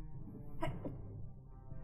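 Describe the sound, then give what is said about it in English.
A single quick sneeze bursts out once, brief and sharp, over a low, steady background hum. No one speaks. “Bless you. Bless you.”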